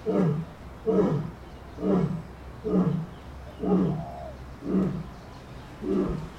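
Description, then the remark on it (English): A lioness at a zoo gives a series of deep, grunting roars and chuffs among rocks at sundown, about seven evenly spaced huffs in a steady rhythm, loud with no one speaking. “So that's a lion's roar, a lion's chuff.”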